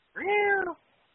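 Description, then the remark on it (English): A single cat meow lasting just over half a second with a drawn-out, slightly falling tone, then quiet. “Joey Styles back in the old ECWA cat fight.”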